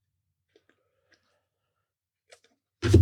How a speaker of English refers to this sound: Okay. Nice job. Nice shuffling.